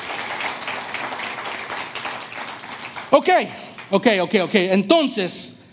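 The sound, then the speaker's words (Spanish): A church audience claps steadily, applauding God, as a dense wash of applause for about three seconds, then excited voices call out loudly over the fading clapping. “Vamos, le van a dar aplauso, denle aplauso a Dios.”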